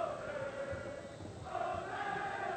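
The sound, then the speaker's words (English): The Moeller high school student section cheers from across the way from the press box at Mason High School during a soccer match, a steady roar of many voices that swells midway, continuous with no single voice standing out. “That's the Moeller student section, by the way, that you hear.”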